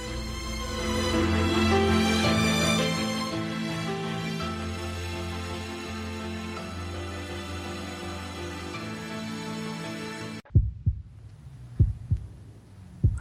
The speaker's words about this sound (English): Well, the heartbeat from Downton Abbey brings us back to part two of Ghost Chronicles International,